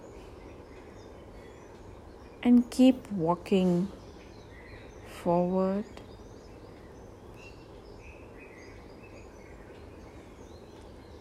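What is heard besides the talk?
birds chirping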